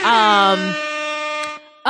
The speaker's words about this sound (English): Yeah, that was fire. She nailed hip-hop it. Air horns.